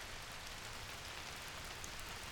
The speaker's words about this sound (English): I listened to the sound of rain.